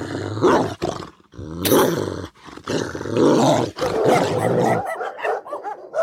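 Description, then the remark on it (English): Several dogs growl and snarl aggressively in a rough, overlapping chorus with sharp barks, loud, continuing for several seconds before trailing off into lighter yips near the end. “In honor of Mattrell's dogs. Fire up that cue.”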